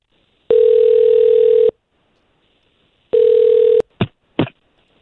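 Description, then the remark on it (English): A telephone call placed by radio station K92.3 rings on the line twice with a steady electronic tone, one long ring and one shorter, followed by two quick clunks as if the receiver is picked up. No one speaks. “We'll try to call him right now.”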